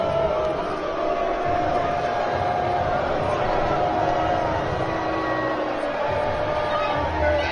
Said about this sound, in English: And appropriately enough, the crowd is booing the hell out of this guy.